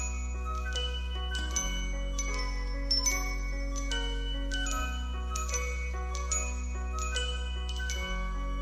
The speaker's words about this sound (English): Starts off on the piano and it just introduces all the instruments as it goes on.